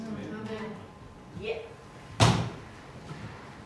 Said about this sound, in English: Did you just hit the pew?